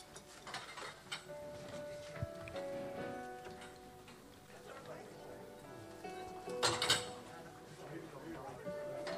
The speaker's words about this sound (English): So let's clear the chairs quickly. Come into some space.